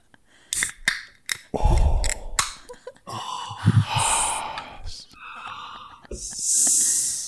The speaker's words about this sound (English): I'm going to open a can of beer. Ready?